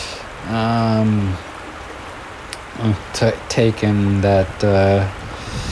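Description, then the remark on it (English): Flowing water of the local Yoshinogawa River rushes steadily in the background the whole time, while loud, tonal voice-like calls cut in over it, one early on and a quick cluster toward the end. “so I can actually have my speakers on and I can hear the background sounds, which are of the local river here, the Yoshinogawa River.”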